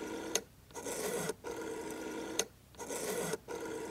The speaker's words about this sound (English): lifts up her phone and dials.